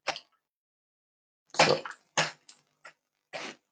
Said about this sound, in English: Sorry, that's so loud. Dice effects, yeah.